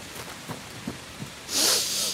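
rain falling

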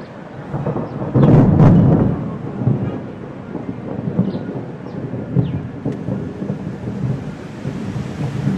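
rain

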